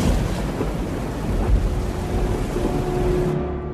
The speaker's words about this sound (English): How much longer until the storm passes?